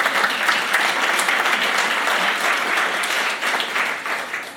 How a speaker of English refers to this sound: Now, yeah, you can clap hands for them.